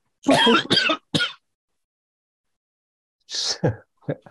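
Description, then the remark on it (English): A quick run of harsh, throaty coughs, then a stretch of silence before a few more rough coughs and throat-clearing bursts that cut off abruptly midway through a cough. “it does actually start coughing. And then finally, as it starts coughing, midway through a cough, it goes silent.”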